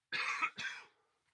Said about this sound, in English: No, that was a cough.